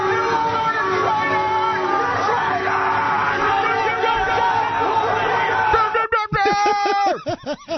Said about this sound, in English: Right, at first you can hear them saying things, but eventually the shouting just becomes so cacophonic is I think the best word for it. Here it is.